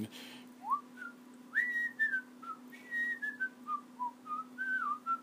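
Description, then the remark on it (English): A person whistles the jaunty, bouncy theme tune of an early-1960s black-and-white TV show in which Ron Howard played Opie, a string of clear melodic notes rising and falling in a steady rhythm, moderately loud over a faint low hum. “Ron Howard, the director, Hollywood director, who I first encountered as Opie on this TV show, and I remember the whistle, but I don't remember the name of the show.”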